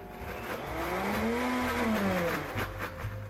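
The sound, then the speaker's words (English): A blender whirs loudly and continuously for about three seconds, blitzing pasta sauce after about 1/4 cup more reserved pasta cooking water is added to thin it, its motor pitch climbing in the middle and then sagging as it churns, with no voices over it. “So I'm going to add a little bit more of my reserved pasta water, just about 1/4 cup. And let's blitz that again.”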